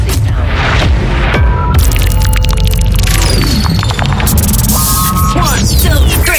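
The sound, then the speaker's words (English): Piercing high-pitched speaker test tones, the high frequency (treble) part of a test for phone, computer, laptop or gaming speakers, glide and shift over a dense bed of deep rumbling bass and crackling static, loud and continuous for several seconds with no voices. “We shall begin with the high frequency sound.”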